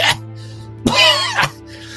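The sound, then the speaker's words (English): A voice imitates the character Klaus Rosenbaum coughing something wet up into a handkerchief: a short hack, then a longer gurgling, throaty burst ending in another harsh cough, fairly loud over a low steady hum. “As you hear him before you see him, as he's coughing something wet up into a handkerchief, as he's like...”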